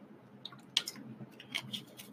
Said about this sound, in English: So, sorry, I'm coughing here. One moment, let me drink a little bit of water.